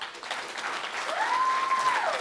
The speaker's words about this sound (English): I'd like to give him a round of applause, please.